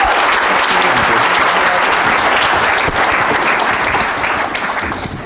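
Loud, sustained applause from an audience, a dense wash of many hands clapping at once that holds steady for several seconds before beginning to fade at the end.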